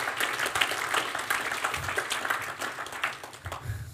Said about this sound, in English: Just give them an applause. Thank them for stepping into service.